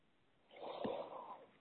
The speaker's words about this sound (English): Breathing deeply, we just allow all the energy bodies to come sweetly into balance. Breathing deeply.